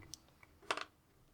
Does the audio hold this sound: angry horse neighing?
no